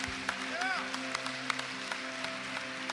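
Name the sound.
audience applauding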